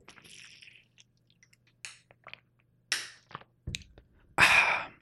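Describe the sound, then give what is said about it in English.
Quiet sips and swallows of water with small wet mouth clicks, a few separate gulps, ending in a louder breathy exhale of relief. No talking. “You gotta drink some water, you know?”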